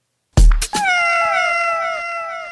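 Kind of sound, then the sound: animal, cat meowing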